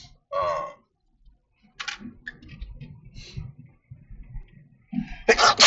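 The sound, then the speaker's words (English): Several sudden, explosive sneezes burst out, separated by quieter rustling and breathy noise, with the loudest, sharpest sneeze coming right at the end. “Those sneezes can be too.”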